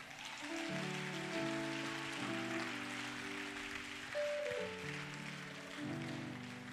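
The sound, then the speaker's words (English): An audience claps for the choir in a steady, dense, continuous wash of applause, with sustained organ-like keyboard chords shifting underneath throughout. “I want us to deliberately clap for the choir.”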